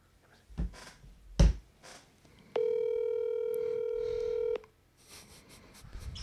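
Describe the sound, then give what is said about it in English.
A phone call to a woman being placed: a few soft taps and bumps, then one steady, electronic ringing tone that holds for about two seconds before cutting off into quiet room noise. “So we will call her. Are we doing it on my phone?”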